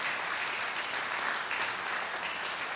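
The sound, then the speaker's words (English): A crowd claps steadily for a few seconds, a dense, even wash of many hands applauding at a full level with no break. “I'd say that'd be a good place to clap right there, right?”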